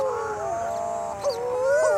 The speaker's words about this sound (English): What a great nature noise. Can you make the sound of a moaning mutton bird?